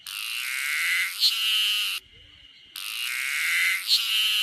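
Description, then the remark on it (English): A harsh, noisy cicada call blares in two long hissing bursts, each about two seconds, separated by a brief pause. The sound is loud, with no voices. “There's a cicada that goes, oh, yeah.”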